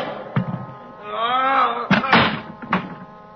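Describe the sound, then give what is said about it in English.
A heavy meat storage room door groans with a long, wavering creak, then bangs shut in a cluster of loud thuds and clanks, with no one speaking. “Behind me, I felt a large cold handle. The door to the meat storage room.”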